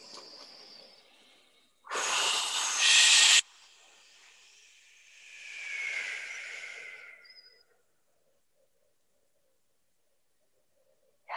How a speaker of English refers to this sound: Okay, so let's just breathe in and a sigh with the exhale. Maybe a whoosh with the exhale.